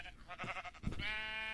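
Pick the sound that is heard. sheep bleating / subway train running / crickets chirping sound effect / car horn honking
sheep bleating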